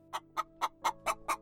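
A rooster clucks in a quick, steady series of about seven short, even clucks, fairly clear, with no voices.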